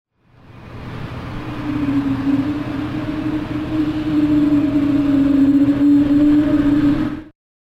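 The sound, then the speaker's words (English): A Pratt & Whitney geared turbofan jet engine gives off a low, whale-like moaning whine, a steady droning tone that swells and rises slightly over a broad rumbling roar for about seven seconds, with no talking. “Here is the Pratt & Whitney geared turbofan engine making the whale sounds”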